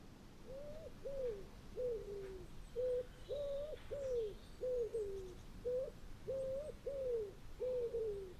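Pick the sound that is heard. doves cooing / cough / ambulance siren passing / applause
doves cooing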